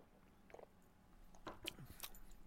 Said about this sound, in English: So I'm going to have a sip of this, and it looks really good to me, and I feel kind of thirsty right now, so this comes at a good time. So here we go.